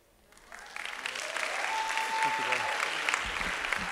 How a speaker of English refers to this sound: All right, one more round of applause for them.